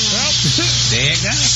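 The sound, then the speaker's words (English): A loud, steady hiss of aerosol insect spray runs unbroken for the whole moment, while voices murmur and talk over it. “I got some wall spray. I got some wall spray.”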